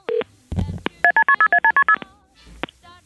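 A quick run of eight telephone keypad dialing tones, evenly spaced beeps pressed in rapid succession, with a few clicks and handling thumps before and after.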